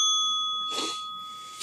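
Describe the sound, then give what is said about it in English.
A bright notification-bell ding sound effect rings out and sustains its clear, steady tone through the whole short clip, with a brief whooshy swell partway in. No one speaks. “If this is your first time watching and you haven't subscribed, go ahead, click that notification bell, subscribe, and follow us.”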